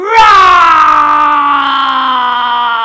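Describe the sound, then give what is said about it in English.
A child's voice lets out a long, loud, drawn-out roar imitating a big dinosaur, starting high and strained, then holding steady and sliding slightly lower for nearly three seconds. “And if you've chosen a dinosaur, can you do me a big dinosaur roar?”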